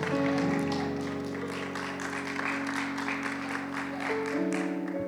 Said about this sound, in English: Come on and give God a praise all over this place. Our kids are being dismissed to their classes, but as you take your seats, give God another hand clap of praise.